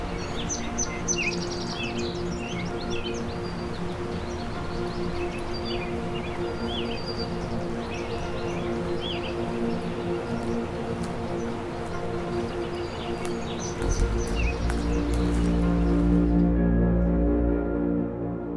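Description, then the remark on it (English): Palm warbler song mixed among other chirping birds, short high notes scattered over a steady low droning hum that swells into a louder rumble near the end. “We also have a palm warbler here.”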